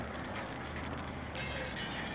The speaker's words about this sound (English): And it is the train station